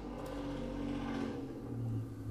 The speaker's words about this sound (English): Just a casual motorcycle drive-by. It wasn't even a motorcycle. It was just the stupidest-looking car you've ever seen.